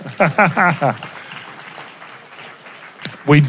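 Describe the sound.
An audience in an auditorium claps in a steady, dense patter for a couple of seconds after a brief burst of speech, the applause fairly soft, with a voice cutting in again at the end.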